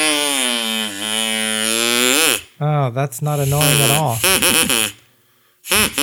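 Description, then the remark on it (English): A souvenir duck-bill noisemaker lets out a loud, buzzy, duck-like quack held for about two seconds, its pitch lifting at the end, before a person starts talking. “Is it like a kazoo or is it like a duck bill? So the rest of this episode, I'll be talking in duck only.”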